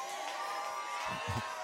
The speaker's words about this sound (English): Oh, y'all shouted about that.